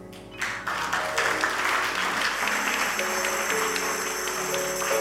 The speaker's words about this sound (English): My brethren, be in the Lord and the power of his might. Clap there. Just first clap there.